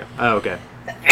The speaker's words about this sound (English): Bless you.